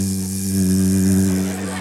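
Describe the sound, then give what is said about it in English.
A voice imitates a European bee floating around, humming a steady, droning buzz at one low pitch for about two seconds, swelling slightly in the middle before easing off. “Like European bees are just floating around like”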